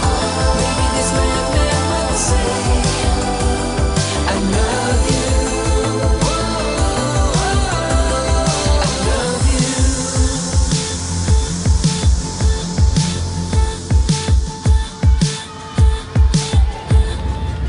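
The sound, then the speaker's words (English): A synth pop song, the debut single from a new album, plays loud and full, with layered sustained synth chords over a steady beat that grows more pronounced and punchy in the second half. “It's like the synth pop song that's the debut single off his new album”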